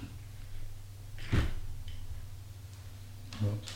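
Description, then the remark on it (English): Someone untangles an earphone cord caught in a chair: two muffled knocks and scrapes, one early and one near the end, over a steady low hum, with no talking. “I got a little something tangled up in my chair. My earphone.”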